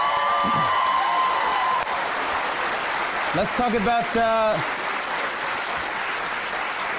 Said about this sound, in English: Can we do applause and I'll just go from the applause and go into it?